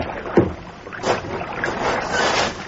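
A small boat moving on water: irregular sloshing and splashing, with one sharper splash early on and a soft steady hiss of wind underneath. No voices.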